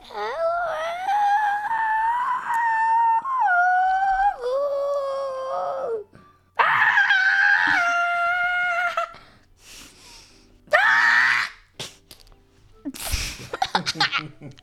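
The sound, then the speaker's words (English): A voice imitates a chicken that got hurt, as a challenge to make another person laugh: a long, strained, wavering squawk, then several shorter high-pitched cries and a harsh, breathy burst at the end. “A chicken that got hurt would sound like.”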